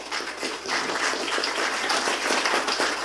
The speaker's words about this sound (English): Everybody, just, if you could, for me, just let's just clap our hands for our elders in this church.